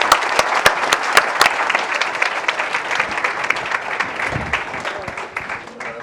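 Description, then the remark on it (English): A crowd applauds the panelists and audience at the end of a panel discussion, steadily for several seconds, a dense wash of many hands clapping with a few sharper individual claps standing out early on, fading slightly toward the end. “So a round of applause for our panelists and for all of you.”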